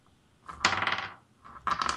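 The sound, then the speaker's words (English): Dice clatter and tumble across a hard tabletop in two quick rolls, each a short burst of bright rattling that fades out, fairly loud with no voices. “Where did that other dice go?”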